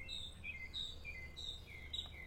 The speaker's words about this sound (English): Bird song, bird tweets can reduce anxiety and paranoia. Paranoia? Really? How? I mean, they said that the bird, like the tweets. I mean, you can literally fall asleep to that.